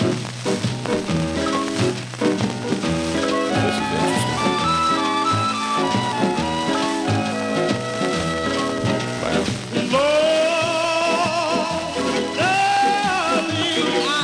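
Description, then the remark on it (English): Music plays from a vinyl record with steady surface crackle and popping running through it, a dense, loud mix of instruments with the hiss and crackle constant throughout. “We'll give you a little more crackle, though.”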